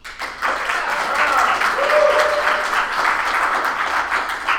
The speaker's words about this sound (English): Also want to thank my wonderful audience for putting up with me recording this episode live in front of them. Give yourselves a round of applause, everyone.